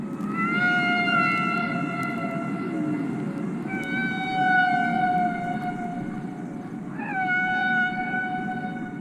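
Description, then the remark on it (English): Humpback whale song played from a magnetic tape recording: long, drawn-out tonal moans with rich harmonics, one sliding upward near the end, sung over a steady low underwater rumble, with no voices present. “And then, leaning forward and putting the headphones on my head, he said, "I think these are humpback whales."”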